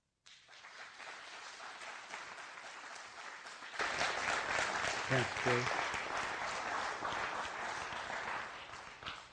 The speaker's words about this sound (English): Thanks for applauding them, because for several of them, it truly is an act of faith to get up front and share, and I deeply appreciate their courage to do that.